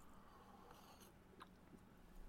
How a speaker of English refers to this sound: Before we begin and officially start the show by turning to our Father in Heaven with our prayer, I need to take a sip of my beverage du jour. Okay, hang on. It's a good one.